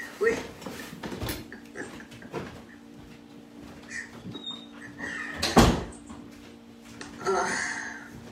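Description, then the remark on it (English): A door is handled and shut, with a few scattered knocks and rattles leading up to one louder thud midway, over a faint steady hum. “Hold on, let me close this door really quick.”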